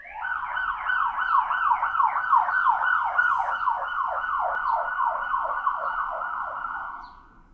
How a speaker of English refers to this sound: You do live near an emergency room. It got a spite siren in there at the last second. I'm so distracted by sirens.